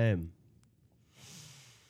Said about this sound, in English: Sniffing.